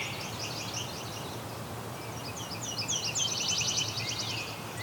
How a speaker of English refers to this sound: Okay, there's a Nashville warbler here too, singing. So very similar to mortal warbler or yellow rump warbler, whichever you want to call it.